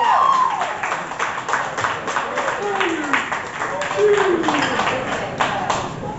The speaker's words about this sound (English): Applaud the poet.